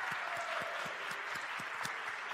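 A roomful of people applauding steadily, dense overlapping claps filling the space at an even, fairly loud level throughout, with no voices standing out.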